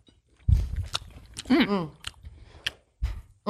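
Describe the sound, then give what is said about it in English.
A crisp bite into a caramel apple followed by loud, wet crunching and chewing in uneven bursts, with a brief hummed voice sound in the middle. “Like, yeah, just take a bite right now.”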